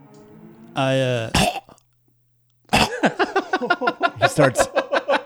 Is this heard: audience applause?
no